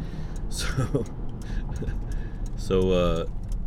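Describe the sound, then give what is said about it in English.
A heavy dump truck rumbles past on a road, its deep engine noise steady throughout, swelling into a louder, tonal roar near the end as it goes by. “Sorry, this dump truck veered toward me.”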